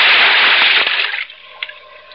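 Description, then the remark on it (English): A loud burst of splashing water as a scuba diver wearing a face mask and air tank dives into deep water, then fades into softer bubbling and gurgling with a couple of small splashes near the end. “Then I tested the free flow of air from my tank and dove.”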